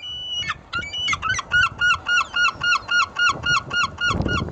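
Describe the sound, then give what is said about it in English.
A herring gull gives a loud series of rhythmic laughing calls, about a dozen evenly spaced yelps rising and repeating over a low background rumble. “it is after all what most people mean when they talk about seagulls, it isn't, it seems, well-loved.”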